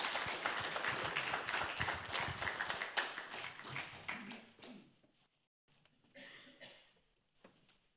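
An audience breaks into a round of applause for someone who has just shared with the group, dense steady clapping for about five seconds that then fades out, followed by a few scattered, quieter claps and rustles.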